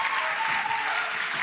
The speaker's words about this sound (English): I think there's about 6 people you raise your hand for this moment, which is awesome. That's when we clap, church. Just when we say that, that's awesome.